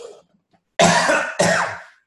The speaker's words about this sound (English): One more cough, hang on.